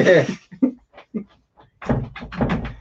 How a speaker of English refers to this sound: And my dog is trying to get in the door. That or it's an exorcism.